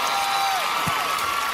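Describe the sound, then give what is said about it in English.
An audience claps steadily, a dense, even wash of many hands that holds at the same level for the whole short stretch, with no voices rising above it. “Excuse me, it's time to clap.”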